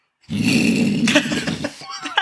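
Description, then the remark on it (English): A voice imitates a fire pit's flame burst with a rough, breathy whoosh-roar lasting over a second, loud, trailing off into a few raspy throaty bits. “So the fire pit had a fart, so I'm guessing it was like...”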